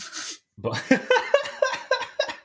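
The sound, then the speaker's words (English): A harsh burst close to the microphone, then a quick run of rough, voiced coughs repeating in a steady rhythm, loud and near, with no talking. “Just cough away from the mic.”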